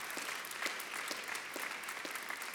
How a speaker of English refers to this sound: Can we clap our hands and give God praise?